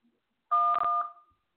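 signal or alarm, telephone dialing tones

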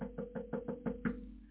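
household object, knocking on a door

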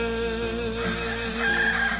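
bird, rooster crowing

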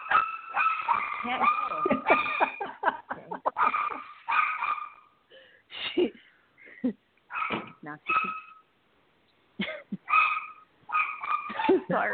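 animal, dog barking excitedly

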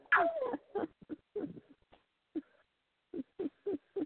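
bird, pet bird vocalizing

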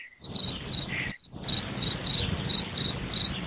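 sound effect, cricket chirping sound effect

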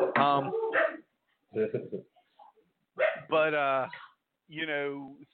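animal, dog barking and yelping

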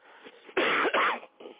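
human body sound, person coughing

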